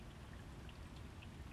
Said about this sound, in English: I'm sitting out in the rain right now, and I'm hoping you can hear how beautiful it sounds.